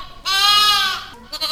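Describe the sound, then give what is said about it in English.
A lamb with a fifth leg lets out one loud bleat lasting about a second, its quavering cry rising and then trailing off, with no voices around it. “Well, the lamb seems to be running around and playing just like normal.”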